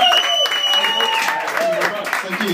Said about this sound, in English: Everyone in the room, come on, let's get the energy up. Clap and cheer, add in a few screams or whoops if you want, let's go for it.